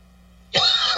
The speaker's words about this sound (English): So I'm actually choking on water, not actual coughing.